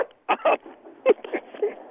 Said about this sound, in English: Sorry, my dog is...